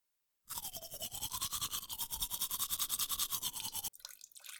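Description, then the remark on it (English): Teeth being brushed with a toothbrush: a steady run of quick, rhythmic scrubbing strokes for about three seconds, fairly loud, then stopping abruptly. No one speaks. “After 3 days of resting and lots of hoping his vision would get better, he noticed something strange happen when he began brushing his teeth.”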